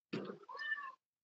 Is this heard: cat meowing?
yes